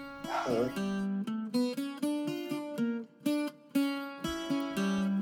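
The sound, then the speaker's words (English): A dog barks over and over, a steady run of loud, drawn-out, almost howling yelps that rise and fall in pitch, with no one talking. “Barking dog aside, and I knew he would make a cameo”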